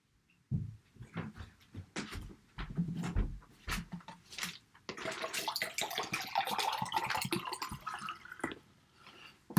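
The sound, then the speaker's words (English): Water pours steadily from a tap into a cup for several seconds, fairly loud, after a few scattered clinks and handling knocks. “My cup was running over. I had to get some water.”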